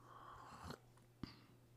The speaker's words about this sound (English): So let's read James 3, a sip of coffee, then we'll get going.